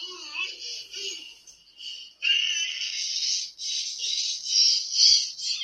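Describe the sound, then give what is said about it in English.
A two-year-old boy screeches in long, shrill, high-pitched bursts, loud, with only brief breaks between them and no babbling or speech. “Yeah, there wasn't that kind of typical babbling noise. Yeah. Yeah, it was like a screech.”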